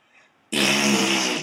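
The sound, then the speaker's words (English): A loud, buzzy raspberry blown with the lips as a mouth fart noise, a single sustained sputter lasting about a second after a brief quiet moment, prominent with no talking. “That was a thumbs down and fart noise, which is the counterpoint of the rap air horn”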